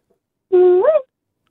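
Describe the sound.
A single loud human cooee call, made to test the echo of a portable toilet cubicle on a construction site: a steady held note that swoops upward into a higher, shorter 'ee' before cutting off, with nothing else around it and only a brief fade afterward.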